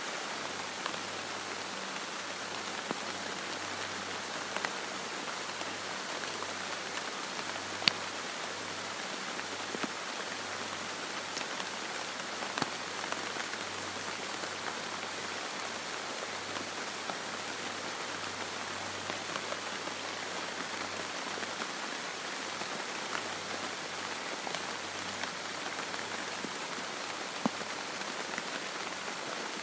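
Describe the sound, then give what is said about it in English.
Steady rain patters on broad, cabbage-like leaves, a dense, even hiss of drops with occasional sharper taps standing out, continuing without a break and with no voices. “Can you hear that rain? It's hitting these like cabbage leaves.”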